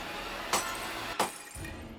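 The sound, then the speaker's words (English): Two sharp pops of vanity light bulbs around a mirror bursting one by one, glass shattering with each, spaced well under a second apart over a steady hiss of background noise, fairly loud. “The light in them surged until they burst, one by one.”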